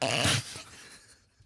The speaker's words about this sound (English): Sorry. I'm sick right now. I tend to snort when I'm sick.